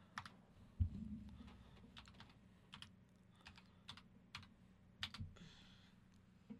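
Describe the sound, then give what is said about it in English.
Irregular clicking of keys on a computer keyboard, a run of light taps with uneven pauses, with a low hum underneath and no talking. “No, let me type something in.”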